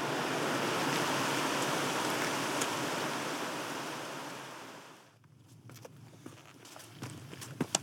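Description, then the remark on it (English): Steady rushing water noise fills the first five seconds, then drops away, leaving a series of crunchy hiking-boot footsteps on a rough mountain path, with no talking. “And fortunately my boots don't, so I'll keep walking and keep them dry.”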